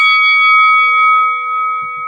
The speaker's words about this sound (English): Let's get this thing started. Hit the bell.